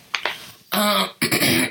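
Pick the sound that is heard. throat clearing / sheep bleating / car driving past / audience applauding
throat clearing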